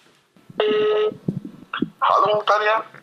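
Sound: telephone ringing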